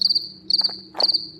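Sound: crickets chirping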